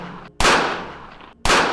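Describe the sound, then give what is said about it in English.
Three shots from a large handgun are fired into a double-parked Oldsmobile: the fading tail of one blast followed by two sharp reports about a second apart, each loud with a long echoing decay. No one speaks. “She was approached by a man brandishing basically a hand cannon. Then he let 3 go inside of Jolie Valenti's double-parked Oldsmobile.”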